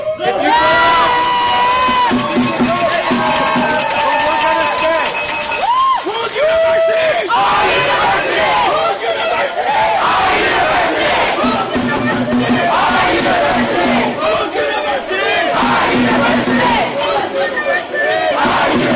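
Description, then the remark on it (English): A large crowd of protesters taking over Gateway Commons yells and cheers in a loud, continuous roar, with overlapping shouted voices rising and falling in chant-like bursts throughout. “So that was the crowds taking over Gateway Commons, and they did leave.”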